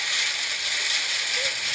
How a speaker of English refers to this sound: Okay. Here's rain on a metal roof.